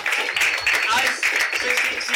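A crowd applauds steadily, a dense wash of many hands clapping that holds loud and unbroken for a couple of seconds, with a few faint shouts mixed into the noise.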